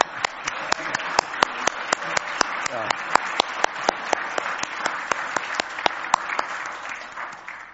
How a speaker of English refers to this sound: So just to start, I hope you'll join me in applauding the Heartland Institute.